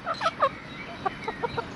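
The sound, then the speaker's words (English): Chickens cluck in short, bright bursts while scratching up the lawn in a garden: three quick calls at first, then a quieter run of soft clucks spaced out over a faint outdoor background. No one speaks. “The chickens definitely do affect the garden. To look at them right now, they are scratching up the lawn.”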